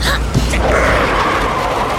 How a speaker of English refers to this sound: Slamming on the brakes. Oh, no.